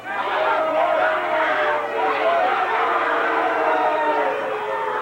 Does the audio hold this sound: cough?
no